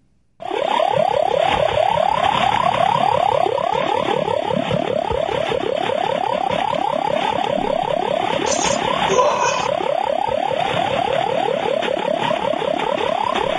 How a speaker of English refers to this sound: Do you want to hear what HAARP sounds like? Yeah. I found this clip. I was listening to a little bit of Art Bell, and he played. I got the clip from him.